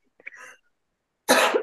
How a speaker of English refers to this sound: Sorry. Got a cough out of you.